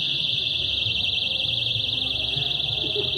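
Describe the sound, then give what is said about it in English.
Several shrill electronic alarms tied to balloons, carried by about eight people into a crowded room, blare at once, merging into a steady, warbling high-pitched tone that never lets up, with faint murmuring voices underneath. “Each, there's like eight different people with balloons. Each has got like beepers, alarms in them.”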